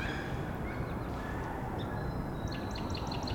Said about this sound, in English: There's the wood ducks.